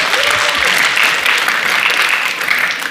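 Steady, dense audience applause: many hands clapping at once in a loud, continuous wash that holds for the full three seconds, with a faint voice briefly audible underneath.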